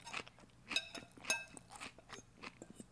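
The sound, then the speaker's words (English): Crisp crunching as someone chews the crunchy, chewy, thick stems in a bagged salad of chopped vegetables, a steady series of irregular bites and wet mastication sounds with no talking. “But then when you really get into it, you get these crunchy, chewy, thick stalks.”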